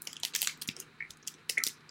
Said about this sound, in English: He's putting it in his mouth! He's chewing it!